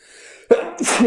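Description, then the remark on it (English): A single forceful sneeze, preceded by a short quiet intake of breath, then a sharp burst of breathy noise that trails off with a brief exhale. “Bless you.”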